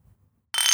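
household object, beer glasses clinking

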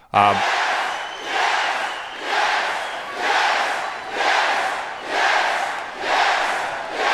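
crowd, crowd cheering

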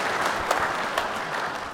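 crowd, clapping

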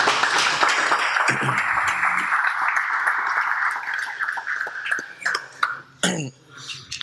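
crowd, audience round of applause

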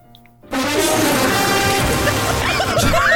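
sound effect, fart sound effect

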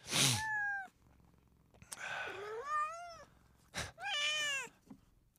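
animal, cat meowing

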